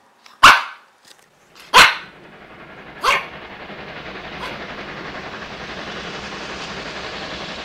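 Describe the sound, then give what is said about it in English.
A dog named Rover, being set free at King's Pylon, barks three times, loud and evenly spaced, then once more more faintly, while a steady, rushing rumble like a passing train swells underneath and continues. “Just wait till I set the dog free.”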